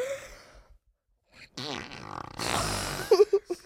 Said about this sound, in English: That sounded like a guy fart. Sounded like an old man fart.